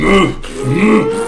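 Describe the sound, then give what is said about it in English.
A voice blows two loud, wet, buzzing fart noises in quick succession, with no words spoken. “So with the plan set in motion, the troll runs up to the hill, starts farting everywhere.”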